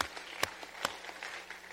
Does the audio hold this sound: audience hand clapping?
yes